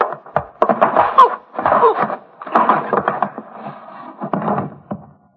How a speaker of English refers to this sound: Open the door.